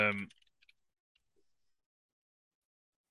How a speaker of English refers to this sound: I'll talk while I'm typing so that, you know, it's interesting for the people. I'm just checking to see if Kip Sabian has wrestled at all since he got injured.